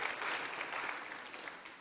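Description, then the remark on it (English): Audience clapping at a church service: a dense, even patter of hand claps that holds steady for under two seconds, then eases off slightly toward the end, with no voices over it. “One person clapped for that.”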